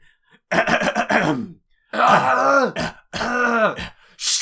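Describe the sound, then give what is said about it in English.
Someone vocally imitates a character's coughing fit from a dubbed show: a quick run of five or six voiced hacks, then two longer, strained groaning coughs, ending with a short breathy hiss. “He does that in the dub, and then he says, sorry, I can't seem to shake this cough.”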